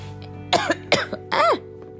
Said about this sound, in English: Excuse me, y'all. I did not try to cough.